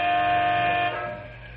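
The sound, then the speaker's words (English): A big Canyon City Truck Company transport truck's air horn blares in one long, loud, steady blast for nearly a second, then cuts off, leaving a fading rumble of traffic and engine noise. The driver honks impatiently while waiting on the North Highway for a freight train blocking the road. “leans on his air horn as he grows impatient”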